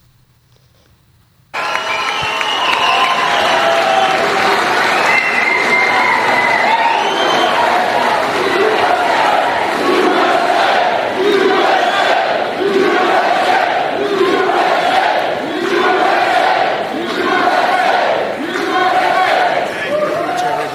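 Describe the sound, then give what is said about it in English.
A large crowd at a rally roars with sustained cheering and applause as Donald Trump walks onto the stage, starting abruptly after a moment of near silence, loud and continuous with swelling, rhythmic waves of shouting throughout. “Here's Donald Trump last night walking onto stage, letting people know who he is.”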